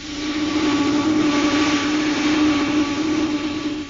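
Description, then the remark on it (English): A disintegrator ray blasts chunks of concrete masonry on the moon, reducing them to a liftable size while searching for survivors underneath: a steady, loud droning roar with a strong low hum and a hissy edge, holding constant for about four seconds with no voices. “So don't blast too deep with the disintegrator. Just reduce the chunks of concrete to a size we can lift.”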